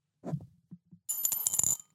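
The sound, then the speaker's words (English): A coin drops into a soup bowl with a dull clunk and a couple of soft bounces, then a bright metallic ringing and rattling as it spins and settles, lasting about a second; the first of several coins being dropped into the bowl. “So here's number one coin. Dropping now.”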